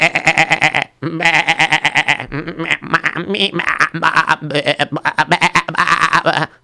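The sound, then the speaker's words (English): Sheep bleat loudly, a string of wavering, nasal calls following one another with only brief pauses, several animals overlapping at times, with no talking. “I'm taking care of the sheep.”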